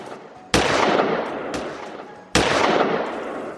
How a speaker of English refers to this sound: Bitter Creek, again on his back, began shooting holes into the Ransom Saloon sign.